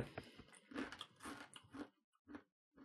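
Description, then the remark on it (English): Loud crunching of crispy cheesy avocado snack chips being bitten and chewed, a rapid series of crackly bites that slows to a few separate crunches near the end. “We're going to munch these.”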